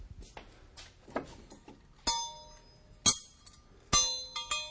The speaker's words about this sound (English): We made a little schoolroom here, and this might represent a schoolroom in the valley. But anyway, there's some school bells.